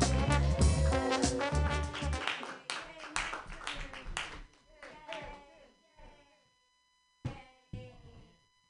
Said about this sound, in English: All right, everybody. Your last comedian. Clap your hands together for me.